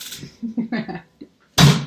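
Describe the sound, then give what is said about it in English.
A door opens in a toilet with a sudden loud, rushing clatter near the end, following a stretch of brief muffled voices and soft movement. “And who the fuck just opened that door?”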